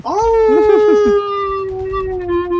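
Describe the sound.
A person's voice imitates a long, sustained wolf howl, rising at the start and holding a steady pitch before slowly fading, loud with no other talking.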